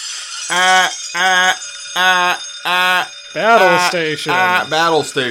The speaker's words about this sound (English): I'm going to fade out those alarm bells.